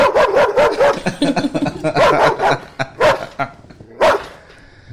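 Several dogs bark loudly in quick, overlapping bursts, a steady flurry of yaps that thins out toward the end before one last sharp bark.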